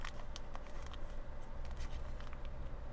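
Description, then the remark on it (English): Someone struggles to tear open a food packet: repeated crinkling and sharp crackles of plastic being tugged and twisted, with no talking over the sound. “But we'll try and get it open. This seems to be hard to open.”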